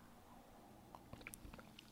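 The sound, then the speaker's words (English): Soft sips of hot green pu'er tea: a few quiet slurps and small wet mouth clicks scattered over the second half, with no talking. “And as you can see, I'm actually drinking it.”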